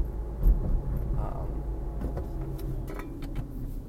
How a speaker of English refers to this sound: Bet you can hear the, you know, stick shift that I got going on here.